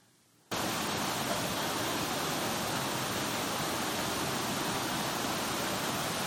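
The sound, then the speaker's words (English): Rushing river water starts abruptly after a brief moment of near-silence, then roars on as a loud, steady wash of noise with no voices; a river crossed on trails in the Doe-speaking area. “You take the trails to any other parts of the Doe-speaking area, and you're going to cross rivers, and you may dare to cross rivers.”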